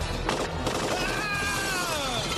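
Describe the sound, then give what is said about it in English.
A dense, continuous volley of gunfire as Hans Gruber's henchman Carl shoots the glass, mixed with shattering glass, loud and sustained throughout, with bright ringing shards and crackling debris layered over the rapid shots. “Why does Hans Gruber ask his henchman named Carl to shoot the glass?”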